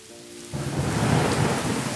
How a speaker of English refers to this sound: Ooh, it was a dark and stormy night.